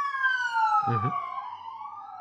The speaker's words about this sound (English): An alarm is going by.